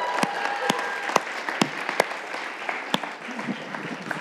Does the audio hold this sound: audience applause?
yes